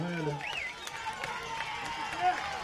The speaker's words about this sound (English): Big fourth down play. Listen to this crowd roar. They want to stop here.